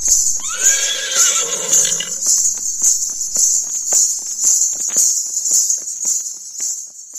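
A horse whinnies loudly for about two seconds, its descending neigh ringing out over a steady, high-pitched chorus of crickets that continues alone afterward, with a few faint hoof clops.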